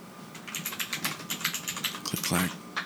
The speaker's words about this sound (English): I got a mechanical keyboard. Bought one.